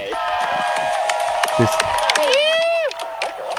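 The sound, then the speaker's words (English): A crowd in a played video clip claps and cheers loudly, with sharp scattered claps over a sustained high shout or whistle that swoops downward near the end; voices rise through the noise. “Why are they applauding?”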